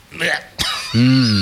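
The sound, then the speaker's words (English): A single sharp cough right up against the microphone, loud and close, with a breathy rasp just before it and a short voiced groan trailing after. “I coughed into the mic.”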